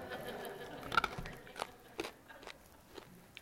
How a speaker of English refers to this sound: Sorry, I just got to bite this cough drop because it's not going to work.